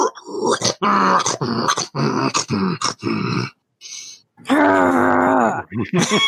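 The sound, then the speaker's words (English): A person makes loud, rough growling and groaning noises in several bursts, imitating a dragon, with a brief pause before a long, drawn-out final growl. “Just growl right back at it.”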